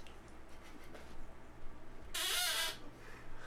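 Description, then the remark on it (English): An old chair gives a single drawn-out, high squeaky creak lasting under a second, standing out loudly against a low background hum. “Your chair sounds like shit.”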